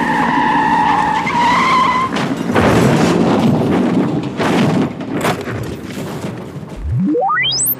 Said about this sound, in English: They all ask me things and then this accident. And the truck crashed right into the place where you'd been sitting.